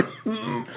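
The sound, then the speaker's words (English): A person coughs hard, several rough, throaty coughs in quick succession with a strained, voiced edge, like the start of a coughing fit. No one speaks. “Got a couple more cough drops there if you need them.”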